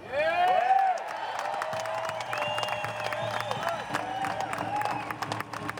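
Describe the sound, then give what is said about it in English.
A crowd at a rally applauds and cheers loudly, with dense scattered clapping beneath overlapping shouts and whoops that carry on steadily for several seconds. “Ladies and gentlemen, give her a huge round of applause.”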